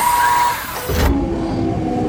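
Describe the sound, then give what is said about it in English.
A car engine with a premium package upgrade roars up with a sudden low surge about halfway through, then keeps revving hard as the car takes off, with no voices present. “That premium package upgrade that I bought for this car sure has some surprising benefits.”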